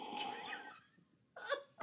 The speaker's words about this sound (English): We're gonna have to get a clean take of you doing a sip of that whiskey and use that sound effect in the future anytime something is just beyond what you can comprehend without scotch in hand.